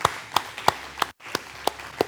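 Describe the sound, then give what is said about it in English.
Steady hand clapping in an even rhythm, about eight distinct claps with a brief pause midway, clear, with no voices, applauding two musicians. “Give them a clap.”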